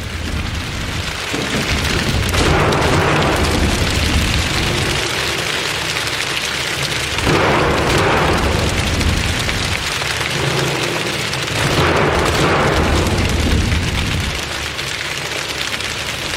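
Many feet stomp on bleachers to make a rolling, thunder-like rumble. It swells in loud waves every few seconds over a steady, rain-like patter of people slapping their legs, with no talking.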